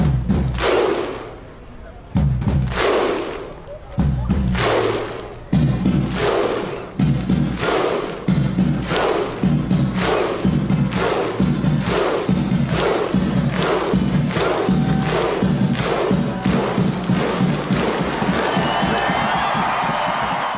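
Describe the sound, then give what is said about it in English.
A football crowd performs the Viking thunderclap chant, the Viking clap celebration of Iceland's football fans: booming unison claps with a deep shout, widely spaced at first, then speeding up into a rapid, loud rhythm. “You might remember their Viking clap celebration, which has been copied at multiple football grounds since.”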